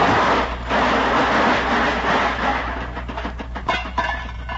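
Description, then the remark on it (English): A loud car crash as a car hits a pole, with a dense burst of crunching metal, followed by a few seconds of rattling and clattering as the car falls apart and debris settles. “Yeah, and I just nudged that pole with it and it fell apart.”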